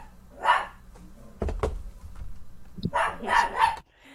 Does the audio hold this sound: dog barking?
yes